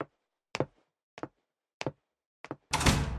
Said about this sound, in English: It's the back door again. It's blown open again.